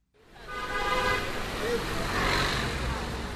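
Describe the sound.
Car horns honk over a dense wash of traffic noise in a Chinese city, sustained blasts overlapping amid the steady roar of engines and a faint murmur of voices in the street.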